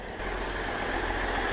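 A Northern Class 158 diesel train rumbles in with a steady, loud engine drone and a low throb, broken by a brief high squeal sliding downward partway through. No one speaks.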